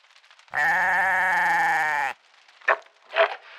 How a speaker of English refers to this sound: Right, pin your lug holes back. Here's your first goat.